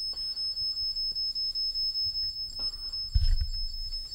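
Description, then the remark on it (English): A K2 EMF meter on a bed beeps rapidly and steadily, a shrill high-pitched tone pulsing about four or five times per second throughout, with a brief low thump near the end. “If you're the older gentleman, would you make the K2, the thing you're touching, can you make that stop beeping?”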